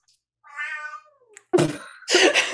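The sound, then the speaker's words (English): A cat gives one drawn-out meow that slides downward in pitch, then follows with two harsher, raspier cries in quick succession, all fairly loud with no talking. “I think the cat said no.”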